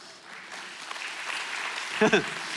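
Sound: audience clapping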